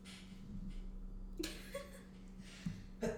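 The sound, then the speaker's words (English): A single sudden sneeze bursts out over a steady low hum, followed by soft breathy sounds and another short burst of noise near the end. “And bless you.”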